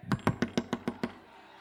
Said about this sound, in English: He probably did the police knock. You know the police knock.